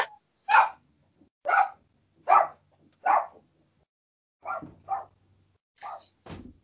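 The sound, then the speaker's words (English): A dog barks excitedly in a quick series of about nine sharp, loud barks, with short pauses between them and no talking, as someone arrives home. “Let me let the dogs out so they don't. Oh boy. Okay. Get too excited.”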